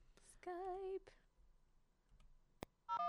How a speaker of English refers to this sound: Oh my God, it's dialing. I'm so excited.